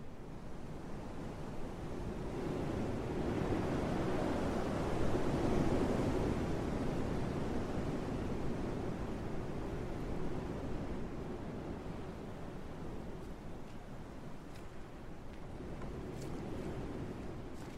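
A strong, steady wind blowing off a lake at night gusts and roars, with a broad rushing wash like water lapping beneath it, swelling in the middle then easing slightly, with no voices.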